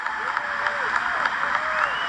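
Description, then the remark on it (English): A crowd applauds steadily, dense overlapping claps forming a continuous wash of sound, with a few faint rising and falling voices carried over the clapping. “It is old fucking white leftist clapping.”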